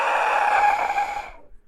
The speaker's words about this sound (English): Yeah, and I got this this Aztec death whistle. Yeah. Ow. Yeah. That's not an elephant, baby elephant. Don't do it again. Dang.